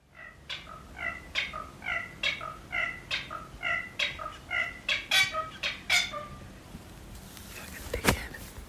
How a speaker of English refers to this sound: It sounds like a giant 2-foot chicken, all colourful, shouting at me through the window. But actually, I think I've seen it. It's actually small and grey and flecked and quite pretty.